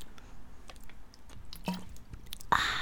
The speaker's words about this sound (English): Why did you stop while I drank water? Because I wanted that sound in there.